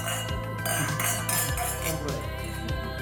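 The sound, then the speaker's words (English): Several wine glasses clink together in a toast in a dining room at Trangallen, sharp bright taps with lingering ringing tones, over a steady low background hum. “And cheers. Cheers.”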